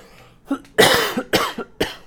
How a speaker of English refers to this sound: Excuse me, I need to cough.